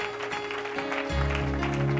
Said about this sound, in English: Why don't you turn that hand clap into some praise right now and worship him.